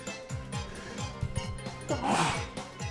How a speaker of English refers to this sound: Bless you. Thank you.